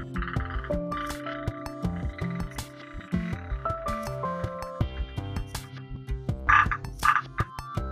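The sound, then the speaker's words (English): Poison dart frog calls ring out in a rainforest in a dense, overlapping chorus of steady croaks and trills, fairly loud, with a couple of sharper bursts near the end and no talking. “That sounds like a frog. Poison dart frog.”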